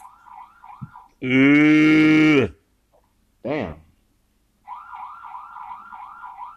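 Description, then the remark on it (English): A car alarm set off by the blowing wind goes off, its warbling, wavering tone cycling rapidly before a long, loud blaring honk cuts in; a voice briefly exclaims, then the warbling alarm resumes. “Get this alarm, Jesus. Give me a better alarm because the wind blowing.”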